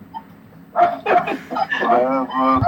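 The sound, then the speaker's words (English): A small dog wearing a sweater yaps several times in quick succession, sharp high-pitched barks, after a brief quiet start, with the barking running nearly continuously to the end. “Their neighbors have this really stupid little dog that wears a sweater and just runs into their backyard randomly.”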